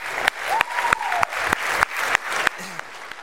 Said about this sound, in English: How about one more round of applause for VBS?